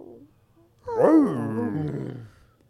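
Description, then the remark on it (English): A dog yawns with a drawn-out, whiny vocal noise that rises then sinks in pitch, lasting about a second and a half, with no talking over it. “Dude, dogs yawning is so funny. Especially when they make a little noise.”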